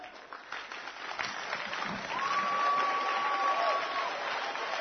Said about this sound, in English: Oh, keep on clapping. Keep on clapping.